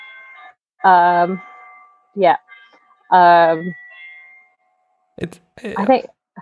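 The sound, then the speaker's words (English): A melodic electronic doorbell chime, being tested, plays three loud, clear tonal notes, two long and one short, followed by a brief burst of someone speaking. “Sorry, my husband's testing the doorbell again.”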